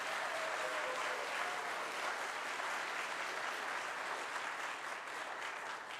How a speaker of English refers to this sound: I want you to pretend that you're at one of those award shows, and now you can clap